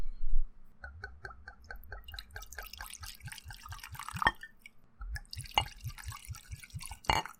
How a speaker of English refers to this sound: Anyway, I'm going to open this bottle now. Okay. Okay. Yeah, please, get some whiskey in us.